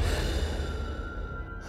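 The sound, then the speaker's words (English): A heavy, labored breath exhaled by a man from exertion, one long breathy rush of air lasting under two seconds, with no talking. “Grossman stood over their lifeless bodies, breathing heavily from exertion”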